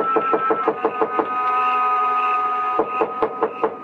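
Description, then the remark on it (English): Rapid knocking on the door of Joe Picatello's dark, small frame building on a side street near the park. The knocks come in two quick bursts separated by a short pause, each rap sharp, over a steady sustained musical tone. No one speaks. “But in the hope he might be asleep in his little apartment up above, I knocked.”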